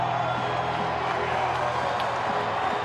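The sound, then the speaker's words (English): A packed arena crowd at an Oklahoma State Cowboys basketball game against the Golden Grizzlies roars and cheers steadily on their feet, a dense, loud wall of voices and whoops with no pauses, as the Cowboys hold the ball down by one with 8.3 seconds left. “Crowd on their feet.”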